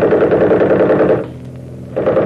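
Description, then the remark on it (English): A loud machine gun fires a long rapid burst, breaks off briefly, then starts rattling again in a second burst. No voices are heard. “The minute I open up with the rifle, smack them with the machine gun.”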